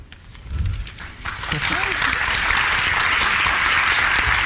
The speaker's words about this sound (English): Neil starts applauding. Others join in. Todd swells, and for the first time, there is a hint of confidence in him. The applause stops.